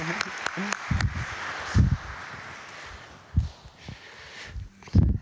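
A crowd gives a birthday round of applause in a dense, steady patter that runs the whole time, with a few sharper claps near the start and occasional low thumps beneath.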